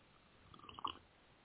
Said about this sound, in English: Pardon me while I sip from my delicious beverage and try to unpack this.